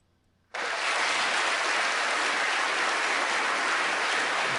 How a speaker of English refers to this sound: Well, I don't know what you're talking about, but, you know, let's applaud.